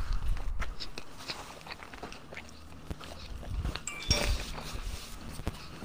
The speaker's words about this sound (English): Fucking chewing over there. It's good pizza, not Mike's.